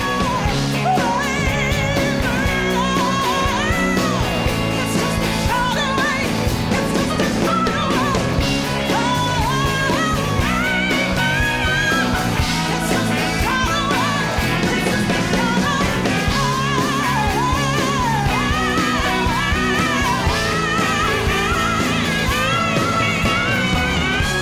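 A loud, dense live rock concert recording with a full band driving steadily throughout, while a high female backup singer wails and bends long notes above the music on stage.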